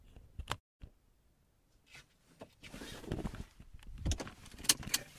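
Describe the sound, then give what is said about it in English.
Sounds from inside the speaker's own parked car in a parking lot after driving: a few sharp clicks and thumps, a brief whir like a power window, then rustling movement and a jingle of keys, with no one speaking. “Okay, I'm in a parking lot. If you haven't noticed, I've been driving.”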